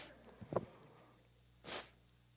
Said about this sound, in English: Oh, Lord have mercy. I hate to blow my nose in front of people.